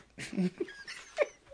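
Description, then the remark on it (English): A person mimics a small yapping rat dog with a few quick, high, squeaky yips and whines, with breathy pauses between them and no other talk. “And the rat dog goes.”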